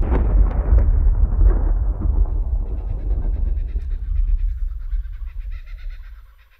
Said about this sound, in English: Just passed over the little farmhouse. You could still hear a faint thunder rolling up the valley of Tantraboo.